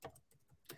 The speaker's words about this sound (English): I'm just typing this for Instagram right here.